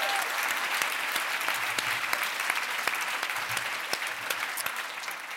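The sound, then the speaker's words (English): Steady applause from an audience welcoming Selena Tusitala Marsh on a Friday afternoon, a dense wash of many hands clapping at an even loudness for several seconds, with scattered sharper individual claps standing out. “I'm clapping that you all made it here this afternoon on a Friday afternoon.”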